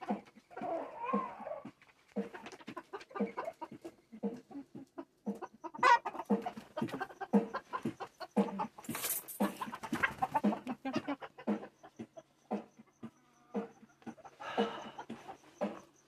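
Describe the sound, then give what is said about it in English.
Several chickens cluck continuously in a busy, overlapping chatter, with one sharp, louder squawk partway through. No one speaks. “The chickens playing.”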